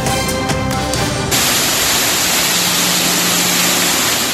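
A loud, steady roar of floodwater pouring down indoors like a waterfall at the Vancouver Film School in downtown Vancouver, caused by flash flooding from torrential rain in the afternoon; continuous, with a brief musical tone fading out at the very start.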